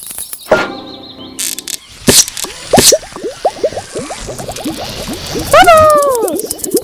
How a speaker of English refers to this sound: I want to pop the bubble.